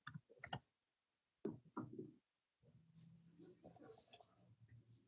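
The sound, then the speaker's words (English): Crisp clicks of typing on a computer keyboard come in short irregular bursts, followed by a low, steady murmur in the background. “Yeah, so I'm just typing away.”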